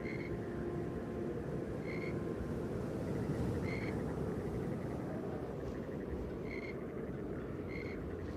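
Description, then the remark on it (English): Frogs chirp in short, bright bursts every second or two among reeds, over a steady, low rumbling background like wind through the reeds. No one speaks. “Around them, frogs chirped and the wind whispered through the reeds.”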